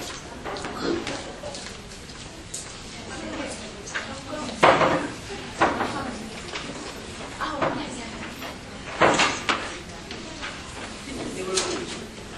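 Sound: door being closed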